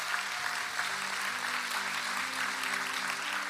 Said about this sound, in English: Come on, let's clap for everybody that said yes.